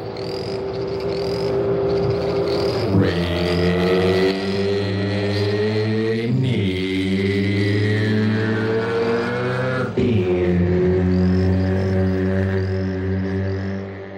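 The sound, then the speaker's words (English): A motorcycle engine in a Rainier Beer TV commercial winds up through its gears on a road: a loud, steady whine that climbs in pitch, then drops sharply at three shifts. Sung voices go "Rainier Beer", blending with and imitating the engine's rising drone. “So what happens is you're seeing a road, and then a motorcycle starts coming, and then you hear these voices go Rainier Beer. Like you're shifting through the gears or something.”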